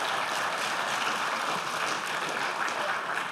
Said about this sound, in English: The reason I wanted to give him applause is I got to catch my wind. So I'm in pathetic shape.